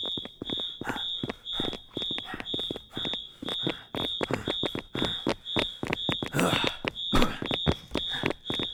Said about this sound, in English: What about the fire alarm? Fuck the fire alarm.